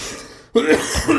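After a brief quiet moment, a person with a cold abruptly clears their throat and coughs, a rough, raspy burst that continues for under a second with no talking.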